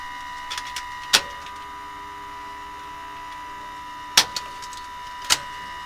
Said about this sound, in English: So what we'll do now, turn this pump down here, which is the booster pump.